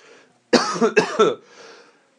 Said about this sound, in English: Oh, that's a weed cough, not a COVID cough.